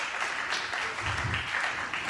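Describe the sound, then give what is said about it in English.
An audience claps together during a sermon, at the preacher's call to applaud his brother, in a steady, dense wash of applause that holds at an even level throughout, with no voices standing out above it. “Clap your hands for my brother.”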